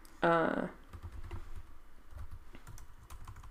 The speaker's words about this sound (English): It's hard to type and talk when you're typing a different thing that you're saying to the what you're saying.